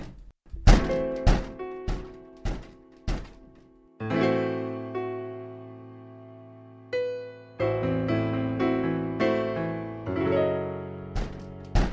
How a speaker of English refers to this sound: Someone's knocking at the door, for real. I think it's a repo guy.